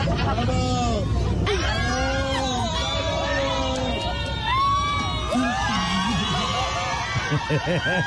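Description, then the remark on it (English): A crowd of airplane passengers during a flight cheers and whoops loudly at a couple in the plane's toilet, many overlapping voices shouting and hollering at once in a continuous, excited din with no pause. “caught on camera having sex in the toilet during a flight as their fellow passengers cheered loudly”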